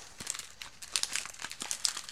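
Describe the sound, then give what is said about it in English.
Crinkly plastic Skittles candy bag rustling while someone eats Skittles, in quick, irregular bursts of bright, crackly noise, with small sharp crackles scattered throughout and no voices. “These Skittles are hitting right now.”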